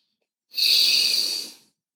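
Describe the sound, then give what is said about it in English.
A single long, steady inhale drawn in through the nose during a guided breathing exercise, fairly loud, with an airy hiss lasting just over a second before stopping. No one speaks. “So as I'm talking, still keep breathing through your nose, in through your nose, inhale.”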